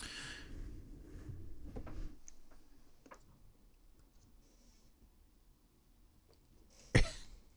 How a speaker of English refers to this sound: Your seething rage suppressed a sneeze.